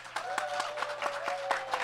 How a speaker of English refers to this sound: Yeah, we'll do applause. We'll do applause. So, who would vote for Stegron?